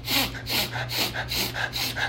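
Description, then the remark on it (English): Repeated wet, congested sniffles from seasonal allergies, drawn in quick succession, about five short inhales in a steady rhythm, fairly loud, with no talking. “I feel like Brady needs to start a remix to that sniffle.”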